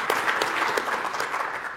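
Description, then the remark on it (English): An audience at the AWS re:Invent conference claps steadily, a dense wash of many hands producing a continuous crackling patter at even loudness throughout, with no voices standing out. “Yeah, we can clap for that. That's worth a clap.”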